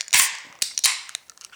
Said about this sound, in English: Glass in one hand, can in the other hand, and let's open her up.